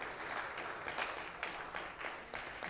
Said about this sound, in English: You know what? Let's just give the Lord a clap offering. That's just awesome.